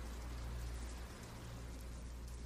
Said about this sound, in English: It is only in those final seconds, as water wells up to your throat and expands, that you notice the raindrops streaking towards your face, in defiance of gravity.